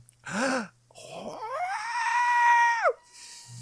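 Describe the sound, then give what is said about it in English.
A person lets out a short, sharp vocal burst, then a long, loud screech that climbs in pitch, holds shrilly for nearly two seconds and drops off abruptly, with no talking. “don't screech.”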